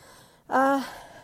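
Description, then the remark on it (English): A single heavy, voiced breath, like a short gasping exhale, fairly loud, with faint breathy hiss before and after it, from a person exercising on an elliptical machine. “It's getting harder on my elliptical. I apologize, I'm breathing heavy.”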